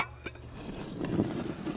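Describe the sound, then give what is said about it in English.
Breakfast dishes, including an uneaten pancake and cereal, being cleared, with a few light, scattered clinks and knocks of plates and utensils over a low, steady background hum. The sounds are faint and irregular. “Okay, if you're not hungry, then just clear your dishes.”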